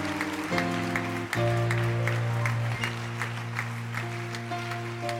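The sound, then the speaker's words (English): An audience claps along in a steady rhythm while sustained keyboard or organ chords hold underneath, the claps sharp and evenly spaced across the whole stretch. “Those who are clapping are those who believe it.”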